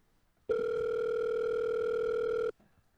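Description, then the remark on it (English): A phone rings with a single steady electronic tone lasting about two seconds, loud, starting and stopping abruptly against a quiet background. “Oh, my phone's ringing.”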